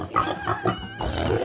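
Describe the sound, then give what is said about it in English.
A wild pig grunts and snorts several times in quick, uneven succession, fairly loud, with no voices present. “One major source of greenhouse emissions are, wait for it, wild pigs.”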